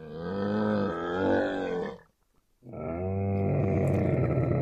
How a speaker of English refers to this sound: That was the ship of the desert. A camel.